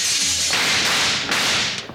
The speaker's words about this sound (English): Wild Bill and Jingles were searching through the train for the bank robbers when they opened the door to a dark vestibule and sudden gunfire crashed around their ears.